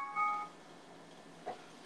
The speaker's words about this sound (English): What is that? Someone's phone's going off.